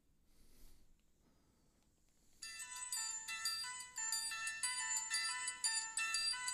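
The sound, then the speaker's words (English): After a couple of seconds of faint room noise, a bright, upbeat sitcom TV theme intro kicks in: chiming, synth-like melody notes in a steady rhythm, fairly loud and with no voices. “Oh, damn, this is a really fucking good intro song.”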